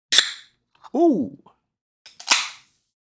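A 20-ounce bottle of a space-flavored drink is cracked open with a sharp pop and brief fizzy hiss, a short voiced exclamation follows, then a second crisp pop with a hissing burst.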